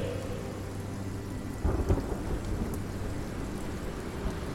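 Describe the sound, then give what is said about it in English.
Steady rain hisses throughout while deep, rolling thunder rumbles underneath, swelling into a louder crack and boom midway through before settling back into the constant downpour. No voices are heard. “And with that, the wind stilled, the rain stopped, the storm ceased, and the sons of Mill landed.”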